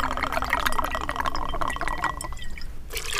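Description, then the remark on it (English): One ounce of citrus is poured into a cocktail shaker with ice for a mandarin egg white cocktail, in a steady, gurgling stream with bright splashy drips, running for about three seconds before a brief pause and a final splash. “We're going to add 1 ounce of sea lip citrus.”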